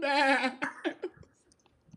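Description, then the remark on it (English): A man imitates a horse's neigh: a loud, quavering, high-pitched whinny that breaks into a few shorter, descending snorting bursts before trailing off into quiet breaths. “He neighs.”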